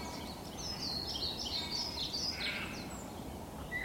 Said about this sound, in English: Backdrop of a blackbird, just providing a kind of, yeah, I'm here, doing my thing. Yeah, I'm only the most beautiful bird song in Britain